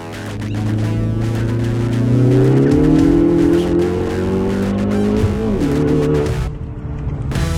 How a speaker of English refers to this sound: That is his 2017 Ford Focus ST with bolt-on mods. Sounding really good.